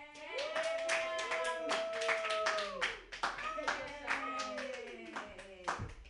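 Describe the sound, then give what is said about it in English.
An audience claps steadily for about six seconds for a comedian about to do new jokes, a dense patter of many hands, with whoops and cheering voices rising over the applause throughout. “So, yay, clap for me.”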